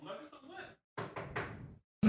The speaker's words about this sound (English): I've been blessed enough to not knock on, where's the wood at? Hold on. I got to knock some wood.